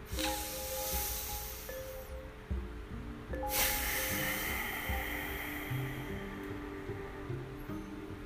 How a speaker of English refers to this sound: So that ocean sound that you heard at the end, so you breathe in through your nose and exhale out through your nose.